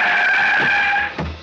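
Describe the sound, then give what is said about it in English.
A cab's tires screech in a loud, sustained squeal on a street that cuts off abruptly as it skids to a halt in front of a person who has fallen into its path, followed by a low engine rumble. “I went sprawling into the street in front of an oncoming car.”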